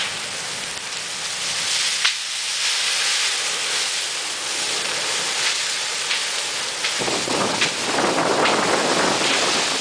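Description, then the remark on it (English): A red cedar tree burns in a large fire: a loud, steady roar of dense hissing and rushing with sharp pops and crackles scattered throughout, continuous with no voices. “It's a little ironic how quickly they burn, considering that one red cedar uses between 40 and 80 gallons of water a day.”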